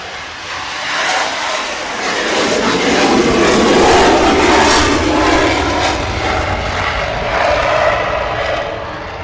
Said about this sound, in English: Hang on, here we go. We're going to get interrupted. Here comes the F-18 right, on the roll here.